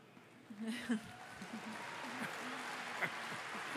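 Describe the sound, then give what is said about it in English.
An audience applauds in a steady, dense patter that starts up after a quiet half-second and keeps going, with voices murmuring underneath the clapping. “Hold your applause. You haven't heard the rest.”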